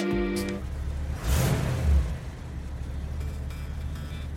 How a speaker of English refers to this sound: Leah shut off the engine of her car and hurried to gather her things.